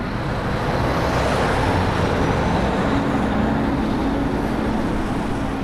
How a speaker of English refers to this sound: Now, the beach is gone. Above it, traffic roars along the Eastern Corridor motorway.